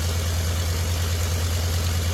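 A restored radial aircraft engine runs steadily at idle, a loud, constant low throbbing drone with a broad rushing noise over it, unbroken throughout, with no voices.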